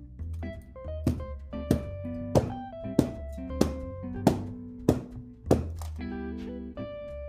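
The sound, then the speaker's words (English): A glass Pyrex dish is smacked down onto a dishcloth about ten times in a steady rhythm to get the air bubbles out, each hit a muffled, dull thunk, with soft tonal music playing underneath. “I'm gonna grab a dishcloth to smack it on so I don't break the glass Pyrex.”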